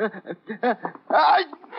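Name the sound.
sneeze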